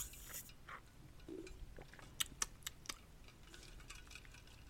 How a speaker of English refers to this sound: Excuse me. I might need to drink a sip of water. Give me a sip.